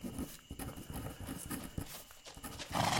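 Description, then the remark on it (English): Steady clip-clopping hooves of a horse-drawn carriage, a quick uneven rhythm of hollow knocks over a soft background hiss, with no voices. “And there's my carriage. Right on cue.”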